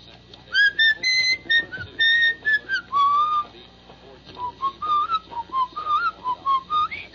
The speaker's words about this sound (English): I'm whistling something. What was I just whistling there?